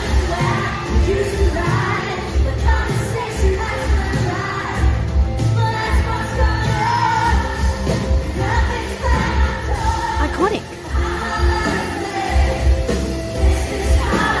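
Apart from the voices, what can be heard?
concert crowd cheering wildly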